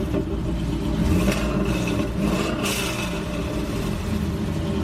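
The engine of a bandit car rumbles loudly and steadily, revving with a couple of brief surges as the car drives past. No voices are heard.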